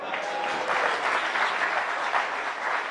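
Sustained applause from a large crowd fills the room, a dense, steady wash of many hands clapping at once with no pauses and no voices standing out.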